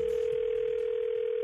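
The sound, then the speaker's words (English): A steady, unbroken telephone dial tone hums at a constant pitch for the whole moment, clear and fairly loud with faint line hiss beneath it and no voices, as a woman starts a phone call to her dad about running out of gas. “starts the call to her dad to let him know about, well, running out of gas.”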